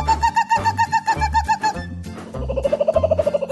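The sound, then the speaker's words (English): A park ranger imitates a kookaburra's laughing call: rapid, rhythmic chuckling hoots that rise in pitch and intensity, fairly loud, with no other talk. “As Thomas puffed slowly along, Ranger Jill made the bird sound again.”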